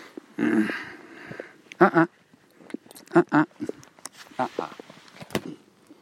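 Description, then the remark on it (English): Muffled thumps and rustles of an iPhone being set down on grass and picked back up, coming in several short bursts of handling noise with quiet pauses between. “Putting the iPhone on the grass and picking it up again.”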